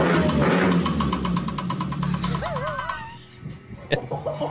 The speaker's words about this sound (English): If you don't know about working on cars, this is the sound of a rod knock.